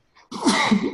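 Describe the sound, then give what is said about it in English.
A single sharp sneeze, fairly loud, with a brief soft intake of breath just before the explosive burst. “God bless you.”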